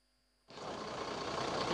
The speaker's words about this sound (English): The truck conveying the expired COVID-19 vaccines arrives at the Goza dumping site, located 2 kilometers away from the Idu train station in Abuja.